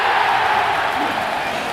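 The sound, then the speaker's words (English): Steady, dense applause from an audience in Cedar City for a marketing intern at a Pizza Hut franchisee, a continuous wash of many hands clapping at an even loudness for the whole short stretch, with a faint murmur of crowd voices mixed in. “I want more applause.”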